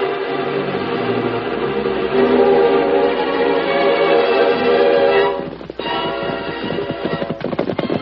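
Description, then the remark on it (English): Horse hooves clip-clop in a steady rhythm against a dense, busy background, with sharper hoof strikes standing out near the end. No one speaks. “for this scheme, I use the white horse. I race like the Lone Ranger.”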